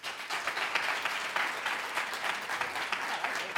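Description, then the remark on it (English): A student audience claps steadily for several seconds, answering by applause whether they are registered to vote: a dense, even patter of many hands with no voices rising above it. “How many of you students in this audience are registered actively currently to vote? By applause.”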